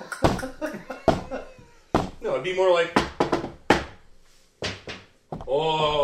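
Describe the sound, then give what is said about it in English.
Several sharp, hollow raps on a door come in short bursts, spaced irregularly between stretches of people talking, each knock crisp and fairly loud against the voices. “Knocking, rapping upon the door does not produce any...”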